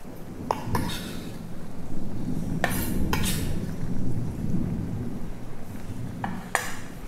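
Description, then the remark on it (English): Grated potato is tipped into a pot of boiling water: a steady bubbling rumble runs throughout, broken by several sharp clinks and scrapes of a utensil against the pot. “Now I'm just gonna put it into the boiling water.”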